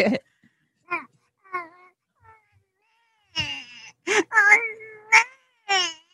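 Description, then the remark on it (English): A person imitates a baby crying: a string of short, high, wavering wails, thin at first, then louder, strained bursts with a quavering, sobbing pitch, separated by brief gasping pauses. “how's my baby cry? All right. Let's hear it.”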